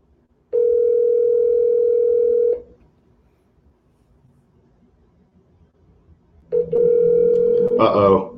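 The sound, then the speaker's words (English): An outgoing phone call to reporter Nick Underhill ringing: two long, steady mid-pitched ring tones separated by several seconds of near silence, the second cut short by a brief garbled electronic burst. “We're getting Nick Underhill on the line.”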